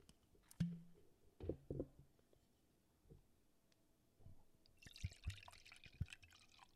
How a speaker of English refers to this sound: And since we're talking about wine, let me go grab myself a glass. Let's pour it up a little. I'm going to grab some wine.